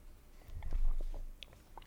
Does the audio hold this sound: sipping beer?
yes